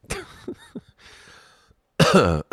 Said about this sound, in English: You gotta excuse me, I just had one of the worst coughing fits in my entire adult life. This was about 10 minutes ago. I accidentally took a drink of water and some of the water went down my windpipe and it's still killing me.